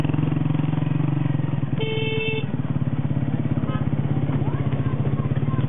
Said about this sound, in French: En moto à Kaboul.